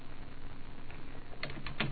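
Keys clack on a computer keyboard in a quick, uneven run of crisp taps as a Bible verse, Psalm 51:12, is typed in, a few louder strokes standing out near the end, with no voices.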